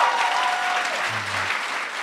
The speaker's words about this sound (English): It won the very prestigious Alfred P. Sloan Award at Sundance this year. It's a big deal, right? Applause, yeah.